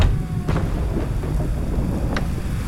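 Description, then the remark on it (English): A thunderstorm with a deep, continuous rumble of thunder under a steady hiss of rain, with a couple of sharp crackles breaking through. No one speaks. “We can look for one after the storm.”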